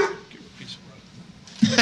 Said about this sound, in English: Fucking dogs. Your dogs are ridiculous. I know. I mean, I love you, but fuck your dogs. That gray bastard.